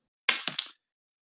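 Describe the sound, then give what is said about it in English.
A small four-sided die, rolled to pick rock, paper or scissors, clatters across a hard surface: a sharp first knock followed by two quicker bounces, fairly crisp, then silence. “So I'll use like die 4 and then just use 1 through 3.”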